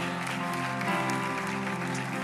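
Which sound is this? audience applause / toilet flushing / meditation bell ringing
audience applause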